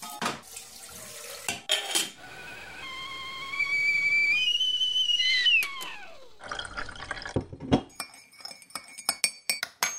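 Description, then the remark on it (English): A kettle's whistle, put on for a tea break, rises in steady, climbing tones, then slides down as it stops. Crisp clinks of teacups and crockery come before it and in a scattered burst afterward. “The sound of a tea break, I'll put the kettle on.”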